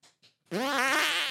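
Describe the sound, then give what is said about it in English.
Two short breathy puffs, then a loud, drawn-out fart from a man shaking his hips, with a buzzy, wavering tone that holds steady for nearly a second, with no talking. “Oh, he's trying to shake his hips to get a fart out.”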